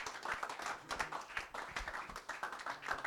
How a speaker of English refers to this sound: One more time, why don't we just clap our hands and just thank the Lord for what he's done.